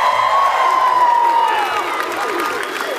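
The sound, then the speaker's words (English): A live studio audience at the University of Washington in Seattle cheers and applauds loudly and continuously during a live radio broadcast, with a dense wash of clapping, whoops and shouts for the full few seconds. “and we are broadcasting live at the University of Washington in Seattle in front of a live studio audience, huh?”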